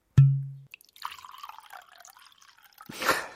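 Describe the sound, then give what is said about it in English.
A dull knock, then a brief, quiet trickle of a small pour of a drink into a glass in a bedroom for a couple of seconds, ending with a short splashy rush. No talking. “Was that a heavy pour or was it a medium pour? Oh, just a small, just small. Just a small, just a small pour.”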